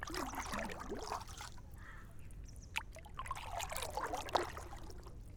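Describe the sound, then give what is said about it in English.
Water sloshes and laps against a small boat on a lake in irregular splashy bursts, with a couple of sharper plinks, over a low steady rumble of a breeze blowing across the water. “And boy, it's such a great day for it, because it's not very hot and there's such a nice breeze blowing across the water.”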